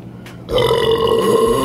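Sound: burp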